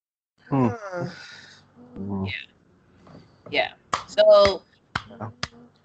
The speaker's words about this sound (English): Are you applauding the WWE fans? Yeah, good job, guys. You guys are fucking idiots as usual.